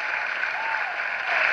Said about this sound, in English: Oh, the audience loved that one. Just let them clap themselves out.